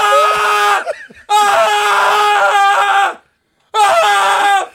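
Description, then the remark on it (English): A voice mimics frantic, manic screaming in three loud, high-pitched bursts, the middle one longest, separated by brief pauses and a moment of silence, unaccompanied. “And then there was nothing but manic screaming around the office.”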